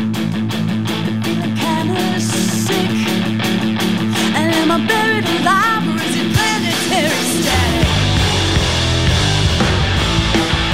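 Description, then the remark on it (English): A live band plays steadily at full volume in a performance studio as dialing music during a membership drive, with a singer's voice weaving over dense guitars and drums; the low end thickens and grows heavier near the close. “Here is some dialing music once again from the Bob and Jeannie Friedman Live Performance Studio.”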